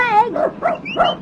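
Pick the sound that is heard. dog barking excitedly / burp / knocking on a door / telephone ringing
dog barking excitedly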